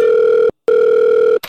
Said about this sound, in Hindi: चलो HR को phone लगाता हूँ.